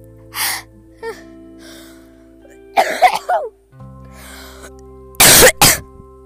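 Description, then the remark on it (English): A series of harsh coughs right into a microphone, starting with a few short hacks, then a rough cluster, and ending with two loud, distorted bursts. “I just coughed all over my mic.”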